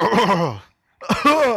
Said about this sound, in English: Sorry, clear my throat.